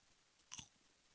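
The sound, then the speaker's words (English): A single crunchy ASMR chew of popcorn, one short crisp burst against an otherwise quiet, still background with no talking. “It's actually delicious popcorn”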